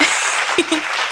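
A short round of applause: dense, steady crackling claps filling the whole moment at an even loudness, with a couple of brief vocal blips poking through.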